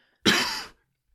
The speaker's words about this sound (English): I hope that cough was... I hope you don't edit that out, because it sounded like you just did like a spit take.